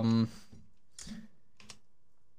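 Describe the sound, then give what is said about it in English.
A short burst of voice is followed by a few soft, scattered keystroke clicks from a computer keyboard as someone writes a Twitter poll, fairly quiet, with a brief pause between them. “As this podcast ends, as he writes elegantly on his keyboard about his rant about poll.”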